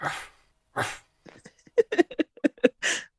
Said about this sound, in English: He's doing the dog half bark thing.